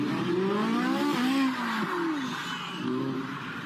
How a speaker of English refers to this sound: The driver of a Ferrari 458 owned by a Houston-based law firm was filmed jumping a curb and crashing into an embankment at a car show. Yeah. Here's the moment that the crash happened.